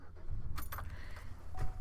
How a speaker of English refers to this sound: Okay, sorry. These are car noises. You're in here with me. It is what it is.